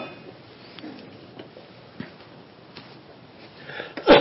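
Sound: sneeze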